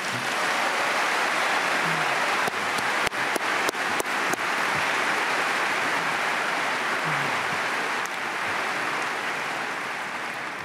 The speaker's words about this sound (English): Now you can applaud.